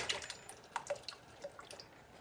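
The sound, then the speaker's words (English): Wet, irregular splattering and plopping as canned ground tomatoes are poured from the can into a pot, a quick run of sharp spits and drips, fading to softer pops. “So I'm just going to go over to the pot again, dump in my ground tomatoes. Be careful. Hold it over the pot and pour it, but pull yourself away because it may splatter, as you can hear.”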